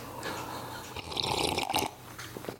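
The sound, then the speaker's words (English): A soft, wet slurping sip of hot tea, with a brief airy gulp and liquid noises rising in the middle and tapering off, no talking. “Let me sip some of this tea.”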